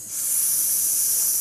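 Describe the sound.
A person makes a long, steady hiss like a snake, a sustained breathy high-pitched sound that rises quickly and holds evenly for over a second, fairly loud with no talking.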